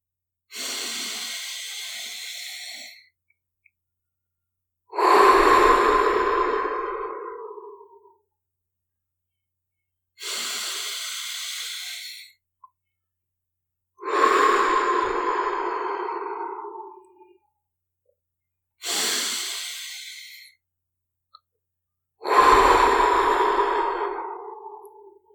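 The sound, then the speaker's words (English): Three slow, deliberate breaths, each a soft airy inhale followed by a longer, fuller exhale, evenly spaced with short pauses between, clear with no talking, taken as a calm-breathing exercise in a guided meditation for kids. “You just do some more calm breaths. Just another 3 calm breaths.”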